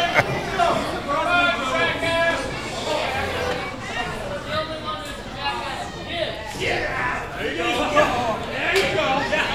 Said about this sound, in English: Crowd's getting a little feisty tonight.